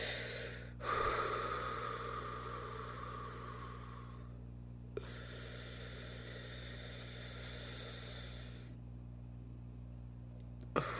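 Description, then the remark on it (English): A slow, deliberate breath drawn in over a few seconds, a brief pause, then a long steady exhale, with a low electrical hum underneath and no talking; a 5-5-7 rhythmic breathing exercise done to calm down. “I'd do like 5-5-7 breathing, right?”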